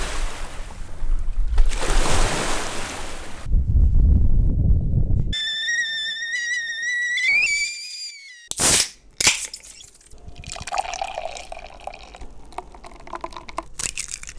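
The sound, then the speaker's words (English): Rushing, steady water of the Columbia River fills the first few seconds, loud, then gives way to a low rumble, whistling tones, a sharp crack, and scattered noises. No one speaks. “Water sound effects of the Columbia River.”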